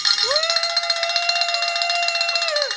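A bell rings continuously for almost three seconds, a loud, steady metallic tone with a fast shimmering rattle, sliding up in pitch as it starts and dipping down as it stops.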